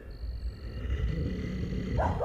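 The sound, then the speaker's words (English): A chaotic animal fight: settlers' dogs barking as they attack two bears amid deep, growling roars, with a dense rumbling low end and a sharper yelp or snarl bursting out near the end. “suddenly the settlers' dogs sprang out of the shack and attacked the bears”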